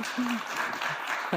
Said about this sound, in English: Can we get applause for Nailed It? I freaking love this show.